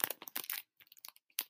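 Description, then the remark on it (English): Plastic packaging around postcards crinkles as it is opened: a dense, bright rush of crackles, then scattered sharp snaps and a final crisp burst. Fairly quiet, with no talking. “Count on your mic to, like, pick up every crackle sound.”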